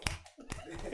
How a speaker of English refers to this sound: Y'all give her a hand clap and do some snaps. Snaps.